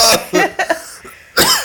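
A man coughs several times in quick succession, loudly, with a couple of harsh bursts followed by a final forceful cough after a short pause.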